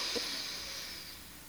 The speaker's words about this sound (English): I'm going to close off the right nostril and inhale through the left.